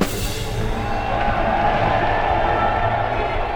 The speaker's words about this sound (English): I guess the clapping should have given it away, but now the dark figures around us rose to their, well, feet, I suppose.